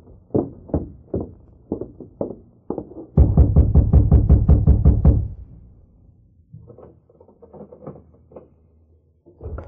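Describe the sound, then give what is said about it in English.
Sharp, hollow raps on a wooden door as the Lone Ranger knocks at Sheriff Clark's home in town after dark: first a few spaced knocks, then a fast burst of loud pounding, trailing off into softer scattered taps with no voices. “It was dark when he reined up at the home of Sheriff Clark, dismounted, and rapped on the door.”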